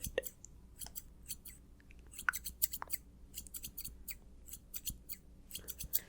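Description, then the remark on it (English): Crisp scissor snips repeat in quick irregular bursts, a steady run of small metallic cuts as scissors trim a person's hair, with no voices over them. “A little snip, snip, snip. Snip, snip, snip.”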